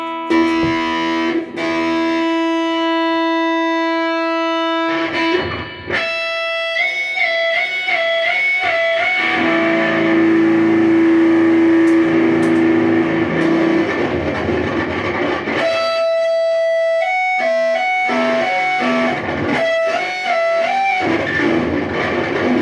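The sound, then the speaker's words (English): Heavily distorted electric guitar, played through a Big Muff pedal and a Rat pedal, plays sustained notes and quick melodic runs, loud and saturated with a thick, fuzzy, breaking-up tone, with brief pauses between phrases and no voices. “My guitar right now is practically breaking up, like it can barely handle the amount of distortion I'm putting at it.”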